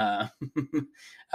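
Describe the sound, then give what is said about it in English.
Someone with a respiratory illness clears their throat in three short, gruff rasps, followed by a breathy exhale, with brief voiced sounds just before and after. “So please forgive me, you know, clearing my throat right in your ear.”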